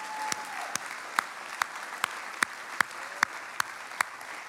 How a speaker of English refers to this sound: If you're going to clap for something today, clap for the Word of God.